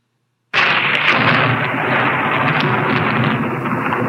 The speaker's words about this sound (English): Sounds like a thunderstorm, right? Is it just a normal Kansas thunderstorm? No. This is actually called Castle Thunder. It was created in 1931 for the movie Frankenstein.